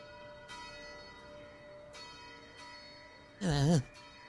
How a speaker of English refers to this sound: Oh, wow. We should get up. The bell's ringing.